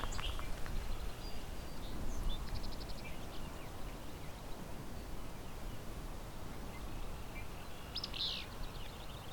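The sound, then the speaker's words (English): A willow flycatcher at Vine Mount Meadows Sanctuary, just east of Hamilton, Ontario, gives a few short, buzzy, sneezy whip-you song phrases, with the clearest and loudest near the end, over a steady low rumble of background noise. “And I have a willow, there it is, willow flycatcher.”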